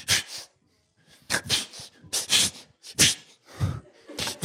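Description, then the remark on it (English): A person imitates their dog's attention-seeking little sneezes with a quick series of short, sharp, breathy snorts, about seven bursts in an uneven rhythm, fairly loud, with no talking. “My dog, Lolly, sneezes.”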